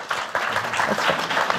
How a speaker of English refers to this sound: Don't hold your applause. You can applaud whenever you want.